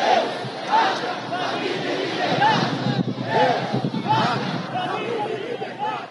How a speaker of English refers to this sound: Chants of God, homeland, family, and liberty as crowds ransacked the country's Congress and Supreme Court and vandalized the presidential palace.